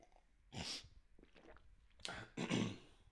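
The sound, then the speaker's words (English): A few rough, breathy throat-clearing bursts, then quieter slurping and a swallow as hot coffee is sipped, followed by another harsh clearing of the throat. “Sorry, just got a little tickle in my throat. Hold on, let me have a sip of coffee.”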